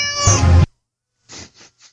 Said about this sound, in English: They get a meow.